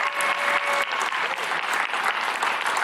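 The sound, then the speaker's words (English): A large group at a Highbridge worship service claps steadily and enthusiastically for seven people responding to the Lord, a dense wash of applause at a fairly loud, even level throughout with no voices breaking through. “I think that's worthy of a round of applause.”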